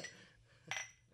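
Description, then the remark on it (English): A single bright clink of beer glasses touching in a toast, short and ringing, with no voices. “Cheers to community. Right. Oh, we missed.”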